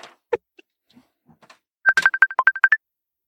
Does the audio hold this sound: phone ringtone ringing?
yes